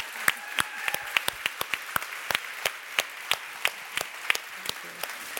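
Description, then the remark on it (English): An audience applauds the BSL interpretation with sharp, irregular claps that stay fairly sparse and steady for several seconds, with no voices over them. “Before we end, can we have a big round of applause for the BSL interpretation, which is incredible.”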